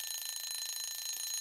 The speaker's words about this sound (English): You always forget one step at some point, and this time it was the turning off the timer.